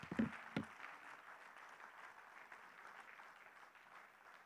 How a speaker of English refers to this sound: Can we put our Bibles down and just clap our hands one more time, thanking God for his word today?